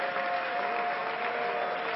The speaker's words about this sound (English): And everybody said, in Jesus' name, let's clap our hands unto the Lord, everybody.